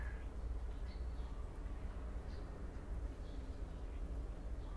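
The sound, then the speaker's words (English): Faint morning birdsong drifts over a steady low rumble, with a few high chirps every second or so and no one talking. “I want to say thank you to the birds. They sing very well this morning for us.”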